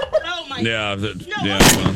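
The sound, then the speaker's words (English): A single sharp shot from a Missouri rifle, fired at a loose turkey, cracks out loudly near the end. It follows a stretch of wavering, warbling voice-like tones that continue faintly beneath and after the blast. “Dawn got her Missouri rifle out there and just took care of it.”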